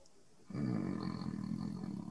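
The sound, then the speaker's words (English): A person imitates a lion's roar: after a brief quiet moment, one loud, rough, sustained growling roar starts abruptly and carries on. “Just became a lion.”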